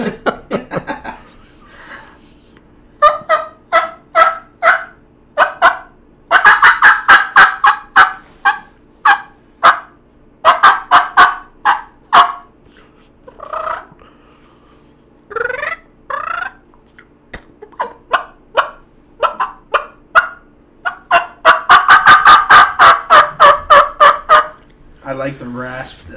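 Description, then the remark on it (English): A turkey call, wetted down before use, runs through a series of raspy yelps, sharp repeated notes in quick rhythmic bursts with short pauses between runs, loud and clear with no talking over it. “Yeah, sometimes the rasp is a little too much, but I got another call that's got a flat edge on it, and it cuts down on the rasp some.”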